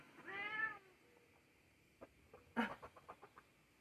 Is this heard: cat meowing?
yes